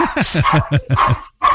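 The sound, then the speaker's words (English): A dog barks rapidly, about six or seven sharp yaps in quick succession, a brief pause, then one more bark, loud. “So what sort of dog have you got?”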